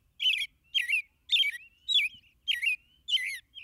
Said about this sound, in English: These rich, caroled phrases are among the best loved and most widely heard in North America. This superb song belongs to perhaps our most familiar bird, the American robin.